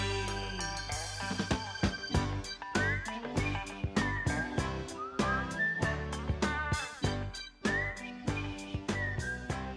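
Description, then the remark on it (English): A bright whistled melody carries the last chorus of a song over a full band, with a chunky beat of steady drum hits and chords keeping a mid-tempo pulse; the whistling sits clearly up front throughout, with no voices. “whoever whistles that last chorus has provided a happy, sad goodbye as the band could possibly offer us.”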